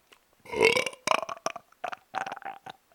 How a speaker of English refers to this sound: Dude, I got to burp again.